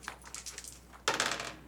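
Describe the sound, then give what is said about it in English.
A few light clicks and taps, then a sudden loud burst of dense clattering as dice are rolled for an attack in a game, tumbling and rattling across a hard surface. No one speaks. “Go ahead and roll an attack.”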